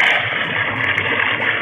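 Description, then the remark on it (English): Water pours steadily into a submarine's hull through a hole shot in it, a loud, continuous rushing and gushing with no breaks and no voices. “Man, I just shot the inside of the submarine. I'm taking it in water right now.”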